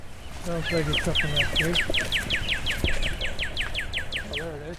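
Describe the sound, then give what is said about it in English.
A cardinal's bright, almost tropical-sounding song: a fast, steady series of clear, ringing whistled notes repeated over and over, fairly loud, with a murmur of lower sounds underneath. “Then there's a cardinal, which is probably the most beautiful and outstanding sound you'll hear in the spring outdoors in open areas. A really bright, beautiful, almost tropical sounding song.”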